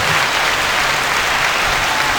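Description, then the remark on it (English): A steady wash of clapping from an audience fills the whole stretch, dense and fairly loud, with no voices standing out above it. “I'll give y'all a round of applause for that duo.”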